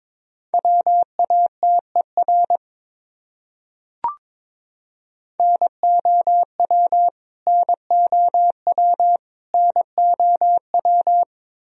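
Morse code tones at 22 words per minute, sending common words: a single steady mid-pitched beep keyed rapidly into short and long bursts, forming groups separated by brief pauses, with one sharp click during a silent gap.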